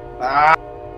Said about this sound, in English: Sorry, guys, there was a train.